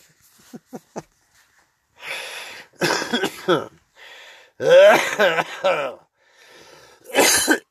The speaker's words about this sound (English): That's just my COVID-19 after cough. I had it months ago. I'm not contagious anymore. Now I'm just dying of the after effect. The lung damage or... whatever the fuck it did.